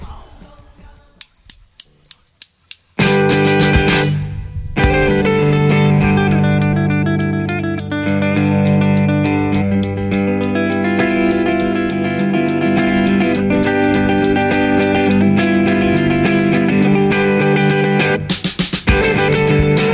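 A handful of sharp, sparse clicks lead into a loud, full band sound with sustained chords and steady drums, ending with a burst of crisp percussive hits.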